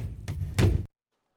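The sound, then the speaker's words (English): A heavy stone door slams shut with a solid stone locking clunk, a lighter knock followed by a loud, deep booming impact that rumbles briefly through the room before cutting off into silence. “As the stone locks on the doors, you can hear it emanating through the room,”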